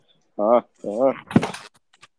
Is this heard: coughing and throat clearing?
no